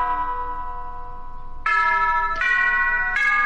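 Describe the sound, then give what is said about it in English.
A wall clock chimes with ringing, bell-like tones: a sustained note rings out, then three more struck chimes follow at a steady, slow pace, each bright and lingering. No one speaks. “And that's just the clock on the wall.”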